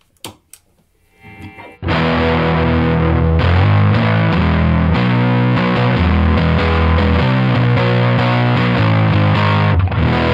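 After a couple of soft clicks, a loud, heavily distorted electric guitar tone played through a distortion pedal kicks in and holds for about eight seconds, thick and fuzzy with shifting sustained notes, then cuts off abruptly.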